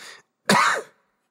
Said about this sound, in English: Excuse me. Well-timed cough there, buddy.